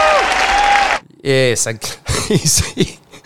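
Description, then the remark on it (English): A loud burst of crowd cheering and applause, with a whistle cutting through, lasts about a second before cutting off abruptly; a man then speaks over silence. “And the cheer for them.”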